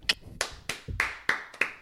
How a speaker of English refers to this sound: Could you just clap? I'm gonna reset. I'm going to walk out. Just start clapping.